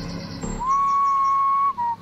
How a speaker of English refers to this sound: A single whistle sounded to the left of me. I spun in the direction of it, my eyes wide and heart pounding. I didn't see anything through the trees.